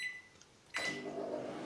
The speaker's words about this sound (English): Let me microwave this burrito real quick.